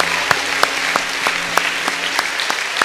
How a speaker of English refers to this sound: All right, let's give them all three a big round of applause.